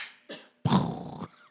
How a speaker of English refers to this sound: Seagulls be quiet.